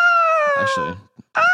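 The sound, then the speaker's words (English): A person imitates an eagle's screech with a loud, sustained, high-pitched cry that slowly falls in pitch, then starts a second cry after a short pause. “Eagle sounds.”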